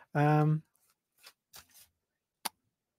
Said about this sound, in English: Yeah. You hear my rustling notes.